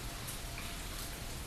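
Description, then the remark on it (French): A steady, even hiss of rain falling, soft and continuous with no breaks, heard alone without any voices. “Son de la pluie, fraîcheur de l'air, picotement dans les pieds.”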